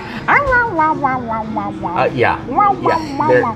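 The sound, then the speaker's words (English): A person's voice imitates a grumbling French bulldog, a run of low, whiny, wavering groans and mutters rising and falling for a few seconds, fairly loud. “They don't like to be alone, and they don't bark. They bitch. They grumble.”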